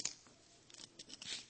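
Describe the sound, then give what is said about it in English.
A few small metallic clicks and rustles of an earring brushing against a microphone as it is taken off, fairly quiet, arriving at irregular moments with no one speaking. “Let me take this off since it's clicking a whole lot. I'm having microphone issues this morning.”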